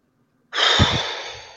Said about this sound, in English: Yeah, that feels better. Every time I breathe out, it just feels so much better in that space.